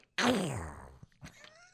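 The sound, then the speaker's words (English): A voice imitates Donald Duck's sneeze: one sudden, loud, raspy squawk that slides down in pitch and fades, followed by a couple of soft breathy sounds. “And the one thing I can do is the Donald Duck sneeze.”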